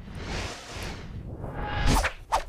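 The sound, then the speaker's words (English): A smooth airy whoosh swells and fades over about a second and a half, then two quick bright swishes snap in near the end, a video transition sound effect used as titles or logos come onto the screen, with no one talking. “Just adding simple swishes and whoosh sounds when the titles or logos come into the screen goes a long way to your videos looking pro.”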